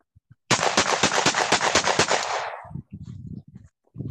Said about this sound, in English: There's the complimentary gunshots on the podcast. Toast? That's a revolver. No. That is God's caliber. Oh, you shot your... Yeah, you just emptied the 1911. Yeah. Good job counting the rounds. Yeah, I had to take a second. It sounded like six to me